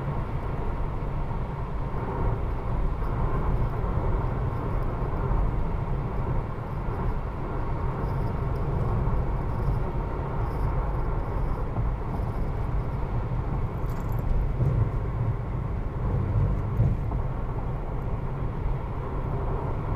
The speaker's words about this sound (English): Alright, we just hit the point where the carpool lane is gone. So, prepare for 24 minutes of traffic. That is what they have us at.